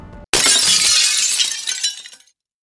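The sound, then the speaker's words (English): A glass hamster cage shatters with a loud, sudden crash of breaking glass, followed by a bright spray of tinkling shards that scatters and fades out over about two seconds, with no voices. “Oh, the glass shatters over her skull”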